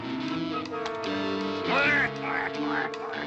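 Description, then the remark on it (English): A duck quacks in a rapid, nasal, chattering run, loud, the quacks blurring into an almost voice-like babble that peaks midway and trails off. “You waddling bird!”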